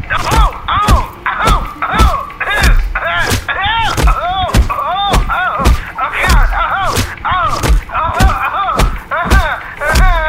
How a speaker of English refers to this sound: She wouldn't stop punching me!